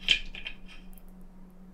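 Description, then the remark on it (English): Dice clatter across a hard tabletop in a quick burst of three sharp clicks, then after a quiet pause one more crisp clack, all over a faint steady low hum. “Oops, shit. Well, I lost that dice forever.”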